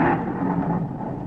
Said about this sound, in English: Doggone, it's thundering, too. Isn't that awful on my last day here?